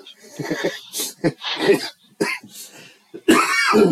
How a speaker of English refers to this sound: And my cough is not weed related. It is shoveling snow when I got home Friday related. Got myself a damn cold.